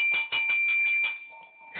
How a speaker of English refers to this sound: That's the bell? That's the bell. When you hear that, that means silence. Cut it down. Cut it off. Mute, whatever.